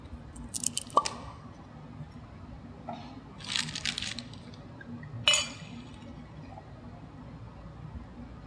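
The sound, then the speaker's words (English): Wine splashes into glasses in three short pours for a group to sample, with a faint clink of glass between them, quiet against a soft background hum. “I'm going to pour it, and we're all going to sample it.”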